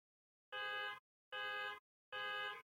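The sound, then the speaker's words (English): A car alarm blares in three loud, evenly spaced bursts of about half a second each, a harsh horn-like tone with short gaps of silence between. “The car alarm going off.”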